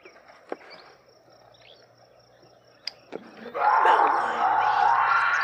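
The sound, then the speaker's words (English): Faint steady insect chirring and a couple of sharp clicks, then a loud, harsh, raspy mountain lion scream bursts in and holds, ragged and sustained, until the end. “You mean like a mountain lion?”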